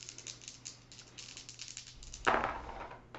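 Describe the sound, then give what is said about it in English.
Dice rattle in a hand with a string of small, quick clicks, then tumble loudly onto a hard surface and skitter briefly to a stop, with a faint hum underneath, rolled for a round of combat in a tabletop game. “So I'm going to roll my die and see if I can get it in one round of combat.”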